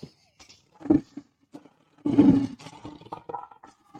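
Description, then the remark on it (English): A lion roar sound effect: a brief low growl, then a louder, rough roar that trails off into rumbling grunts, heard alone. “Listen, it was a little meek, but we're going to restore the roar.”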